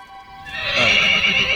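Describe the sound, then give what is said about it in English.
A horse made of sand, ridden through a featureless desert, neighs loudly, a single drawn-out whinny that rises into a bright, strained cry and holds for over a second. “And here I ride a horse itself made of sand.”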